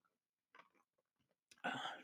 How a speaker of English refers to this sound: Let me take a sip of iced coffee here, and we'll be off again.